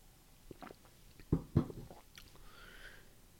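Someone takes a sip of water, with a few quiet wet mouth noises and two distinct swallowing gulps in the middle, then a faint breathy hiss. No one speaks.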